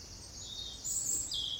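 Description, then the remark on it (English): High, continuous birdsong with bright trilling notes that swell louder partway through, heard alone without any talking over a faint background hiss. “What is that mysterious quality in birdsong?”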